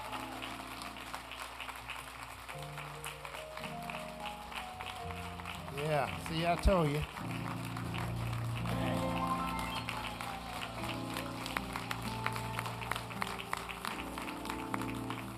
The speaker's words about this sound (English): Thank you all. For that big crowd, I think we can do a little bit better than that. Come on, give them a round of applause.